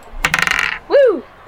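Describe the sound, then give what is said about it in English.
Dice rolled for initiative clatter across a tabletop in a quick burst of rattling clicks lasting about half a second, landing a 15, followed right away by a short, loud rising-and-falling vocal whoop. “I'm using the Natasha dice, so hopefully this will go Natasha”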